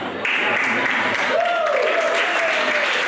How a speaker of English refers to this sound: Statistically, too many of you are applauding.